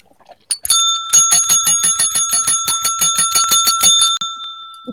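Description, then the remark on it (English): A bicycle bell rings rapidly and continuously for about three and a half seconds, a bright, metallic trill with steady repeated strikes, loud and alone without any voices. “Wait, is that my bell? No, this is my bell from training.”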